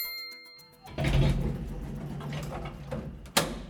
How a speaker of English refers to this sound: Who's going up and who is going down this week? Let's take a ride in the Place North elevator. Doors closing, going up.